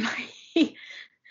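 Muffled coughing into a pillow: a breathy, rasping rush followed by one short, sharp cough burst, fairly quiet, with no talking.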